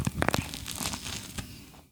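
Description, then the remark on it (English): A crunchy bite into bread: a few sharp, crackling snaps at the start, then a longer rustling, tearing crunch that fades out over about two seconds, with no talking. “Just bite out of this bread.”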